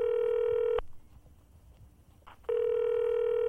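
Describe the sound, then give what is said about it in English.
A telephone ringing tone heard down the line: two long, steady electronic rings separated by a quiet pause of under two seconds, clear and fairly loud with no voices. “We've at least got to phone and warn them.”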